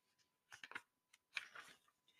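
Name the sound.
book page being turned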